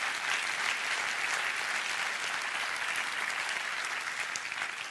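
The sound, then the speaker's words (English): A church audience claps and applauds steadily, a dense wash of many hands at an even loudness for the whole stretch, with no voices standing out. “Clap your hands and rejoice in that right now.”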